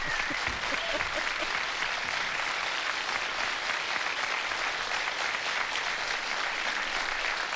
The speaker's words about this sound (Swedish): Mycket applåder. Tack ska ni ha.